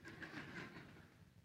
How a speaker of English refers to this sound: But in the 1870s, the train from Charlotte to Greenville was established, and it came right through here. In fact, you may hear it this morning. It's still rolling.